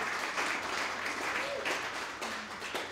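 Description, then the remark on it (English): A crowd applauds steadily, a dense wash of many hands clapping at once, sustained and fairly loud throughout with no clear pauses. “Yeah, you guys can clap.”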